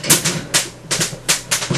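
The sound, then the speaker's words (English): Dice, including a d6, clatter and tumble across a hard tabletop during a tabletop game, rolling off the board, a series of five or six sharp, bright clacks in an uneven rhythm, fairly loud, with no voices over them. “Well, it rolled off board so much that it turned into a d20.”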